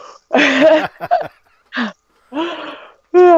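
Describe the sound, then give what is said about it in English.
A drawn-out human yawn, breathy and voiced, broken into several closely spaced bursts with short pauses, ending on a rising, tuneful sigh; fairly loud, with no talking. “Hold on, after this yawn.”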